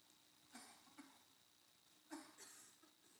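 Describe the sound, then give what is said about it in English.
A few short, muffled coughs, two soft ones followed by a sharper, louder cough, with no talking. “But not only Barnabas, but also, excuse me, let me cough.”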